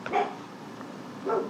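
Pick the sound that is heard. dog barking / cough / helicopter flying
dog barking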